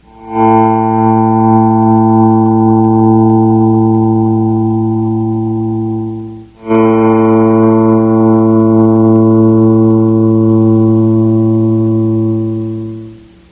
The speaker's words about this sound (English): Here's the fifth string open A for tuning.